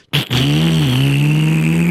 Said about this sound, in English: And they drove the truck, and they ended up by Mr. Goldstein's.